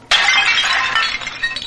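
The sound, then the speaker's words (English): A porcelain tea service in the style of Louis XV shatters with a sudden loud crash, followed by over a second of bright clattering and tinkling shards that slowly thin out. “This, I think, is a porcelain tea service in the style of Louis XV.”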